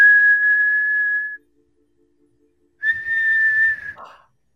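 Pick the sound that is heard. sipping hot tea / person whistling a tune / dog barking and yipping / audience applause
person whistling a tune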